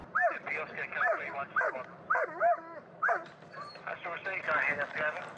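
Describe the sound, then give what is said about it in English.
A police dog barks loudly and insistently on command at people hiding behind a load in a truck, a rapid run of sharp, excited barks and yips with only brief pauses between bursts, continuing for several seconds. “I can give her a command to make a racket and bark at people, even if she can't see them.”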